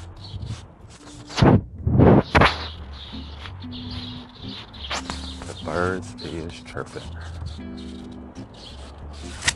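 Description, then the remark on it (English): Birds chirp in short, scattered bursts outdoors around 4:50 on a Friday morning under a clearing blue sky, mixed with sharp cracking noises and a busy ambient background. Indistinct voices can be heard at moments. “The birds are chirping.”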